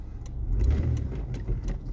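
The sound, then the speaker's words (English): A car engine idles with a steady low rumble while stuck in a traffic jam in a neighborhood, with faint clicks and rattles scattered over the drone and no voices. “Now I'm sitting in traffic.”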